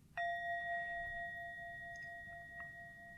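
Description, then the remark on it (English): A single clear strike of a meditation bell, followed by a long, steady ringing tone that sustains and slowly fades, heard alone. “It's also possible to hold it lightly and make something beautiful.”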